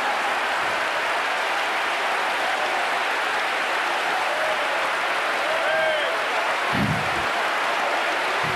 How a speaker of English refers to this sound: Let's clap our hands to the Lord everywhere. Clap our hands to the Lord.